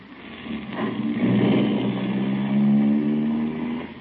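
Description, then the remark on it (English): A car engine hums steadily from inside a moving car, rising in pitch as it accelerates, with no voices over the continuous mid-range drone. “Look out of the car window”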